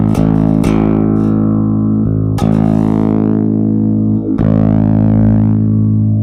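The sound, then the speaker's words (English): Sustained bass notes played through a filter pedal set to sine wave modulation, depth not fully up, the tone slowly sweeping brighter and darker in smooth cycles. A few plucked attacks restart the sound, with no talking over it. “So let's go back to the sine wave.”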